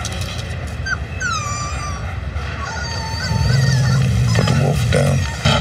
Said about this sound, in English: Oh, it's a puppy. Not a puppy. A wolf. What now? He's a wolf.